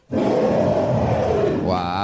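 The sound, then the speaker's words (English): A loud, rough bear roar sound effect holds steady for nearly two seconds, thick and growling throughout, then rises into a higher, strained tail at the end. It is played on the Kill Tony show. No one speaks over it. “That means wrap it up then, or else you're going to bring out the angry West Hollywood bear.”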